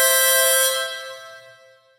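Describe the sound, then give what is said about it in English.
A single loud, brassy horn honk blares out, a sustained blast with a bright edge that quickly fades away over about two seconds. No one speaks. “And without any further ado, why don't you honk on Bobbo for me”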